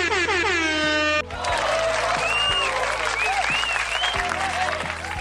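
applause sound effect

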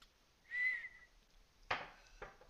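person whistling

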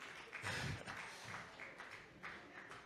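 audience clapping hands

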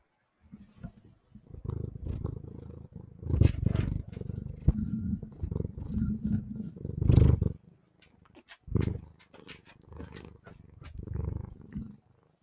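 domestic cat purring

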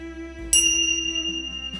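tingsha bells ringing

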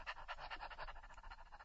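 dog panting

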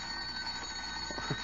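telephone ringing

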